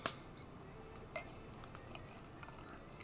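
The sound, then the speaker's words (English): Bourbon from Louisville, Kentucky being poured into a glass: a sharp glassy clink opens, followed by a soft, faint trickle and a few light taps, with no one speaking. “I'll pour myself a little bit more too.”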